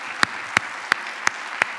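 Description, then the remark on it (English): Congregation applauding in unison: five sharp, crisp claps at a steady, even beat over a soft background hiss, with no voices. “What we are applauding is because victory is now at hand in their lives.”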